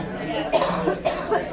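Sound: a person coughing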